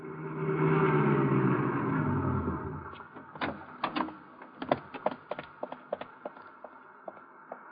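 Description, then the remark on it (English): A car engine rumbles low and steady for a few seconds, then drops away as it pulls off to drive out to the Metropolitan Arena, leaving a string of sharp, irregular clicks and taps. “I stumbled to the elevator, went downstairs, found my car, and drove out to the arena.”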